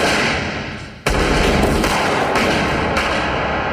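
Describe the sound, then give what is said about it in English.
A sharp, loud bang cuts in about a second into a steady roar of noise, followed by a few more shots at uneven intervals, with no voices. “And then we hear gunshots.”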